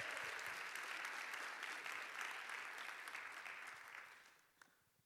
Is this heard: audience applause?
yes